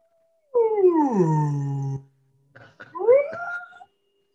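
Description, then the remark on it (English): A voice imitates a whale call with a long, loud, falling moan, then after a short pause a second wavering, rising groan. No words are spoken. “And the whale looks at him really upset. And just kind of...”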